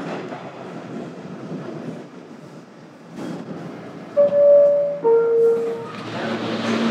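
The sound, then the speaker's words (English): A train rumbles steadily along its rails with a low, continuous roar, then sharp, high-pitched wheel squeals ring out twice near the end before the rushing noise swells again. “All right, made the train.”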